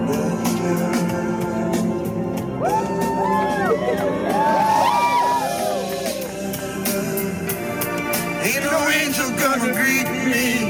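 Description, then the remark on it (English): A crowd on a pier behind a Walmart in Philadelphia erupts in wild cheering as a man takes his last bite of chicken, with dense overlapping shouts, whoops and high rising yells sustained loudly throughout, surging in several waves of excited voices. “He takes the last bite of chicken and the crowd goes wild.”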